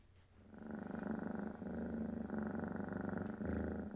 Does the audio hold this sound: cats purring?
yes